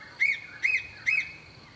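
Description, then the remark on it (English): A male and a female bird calling to each other, the male giving a longer call and the female quicker whistles: three short, high whistled notes, each rising then falling, repeating at a steady quick pace over a faint background hiss, with no voices. “The male is making that longer call, which is a bit faster now the female's shown up.”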